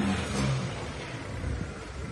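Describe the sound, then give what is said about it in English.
A voice imitates a truck engine revving, giving a rough, buzzing rumble that swells early and then settles into a steady growl over continuous noise. “Broom. That was amazing. Identify as a truck.”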